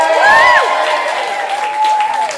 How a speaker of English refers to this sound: Can we have another massive round of applause, please, for everybody involved, all of the writers and performers and creatives. Thank you.